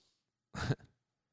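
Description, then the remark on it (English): A woman gives a single loud, forceful inward sniff, a short harsh burst of air drawn in sharply through the nose, with a brief tail. Quiet surrounds it, and no one speaks. “So, for you guys can't hear or see, but it looked like she just started blowing a snot rocket on our floor. And said I was sniffing inward.”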